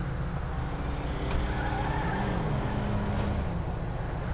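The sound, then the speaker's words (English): A car engine drones steadily and loudly throughout, with a faint tire squeal rising and falling in the middle as the vehicle skids. No one speaks. “Howard Patrol, can you drive that car over to the side of the road so the tow truck can come get it?”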